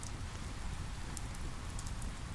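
Steady rain falls during a storm in a dense, continuous hiss, with soft pattering drops and a low rumbling wash underneath, unbroken by any voice.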